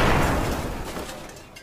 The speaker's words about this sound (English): You hear the door slam.